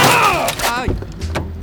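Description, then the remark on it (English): A loud pained vocal cry falls in pitch, followed by a couple of short, heavy thuds as a car strikes a cyclist and bike in a bike lane in Paris, amid continuous loud noise. “Vous venez de me percuter dude, avec I votre think voiture!”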